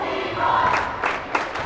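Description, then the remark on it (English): Muhammad fans in a basketball crowd roar and cheer steadily as the Bulldogs rally, with a sustained high whistle or shout rising through the din and a few sharp bursts of noise near the end. “You can hear the Muhammad fans now. Bulldogs are giving them something to cheer about.”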